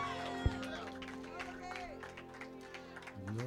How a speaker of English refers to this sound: Please keep jamming those hands. Clap for Jesus.